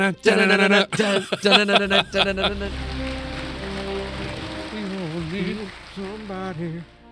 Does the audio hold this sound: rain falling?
yes